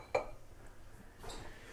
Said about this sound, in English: So I'm going to grab it. I'm going to grab a glass bowl, so I'll have something to pour the water in.